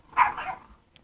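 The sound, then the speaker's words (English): A dog gives a single short, clear bark, followed by quiet and a faint tick near the end. No one is speaking. “What are you barking at?”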